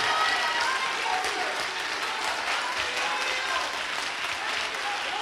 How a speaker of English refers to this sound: Will you clap your hands for what God is getting ready to do? Will you clap your hands for what God is getting ready to do? Come on, clap them real good.